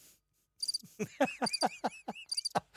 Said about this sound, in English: You got the crickets, you dickhead.